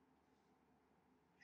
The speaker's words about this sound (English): Sorry, my cat is here. Alice is mad. Oh, that's Alice. Alice hates everybody, for those wanting to know.